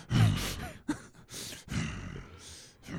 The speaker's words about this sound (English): Oh, what does that sound? Oh shit, there's a horse.